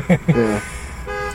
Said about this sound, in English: Excuse the alarm. Somebody's breaking in the car next to us. Should we stop him?